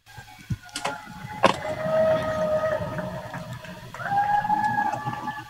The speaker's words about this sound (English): Hear that? Did you hear all that? Yeah. All that shouting? So they're screaming out of their window. Yeah, they do it for 5 minutes every single night from 7 to 7:05.